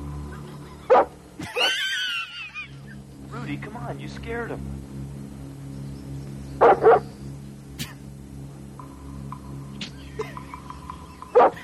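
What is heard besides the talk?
dog barking and whimpering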